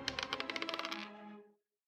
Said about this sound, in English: All right. Come on. Come on, little dice. Don't do me dirty here.